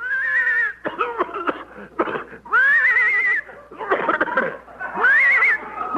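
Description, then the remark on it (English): A hoarse, raspy horse whinny repeats in several loud bursts over a few seconds, with rough, coughing-like sputters between the strained, high neighs, as the horse starts towing a car by rope toward Palm Springs, 10 miles away. “I think the horse is hoarse.”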